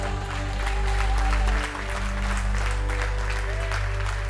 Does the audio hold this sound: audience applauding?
yes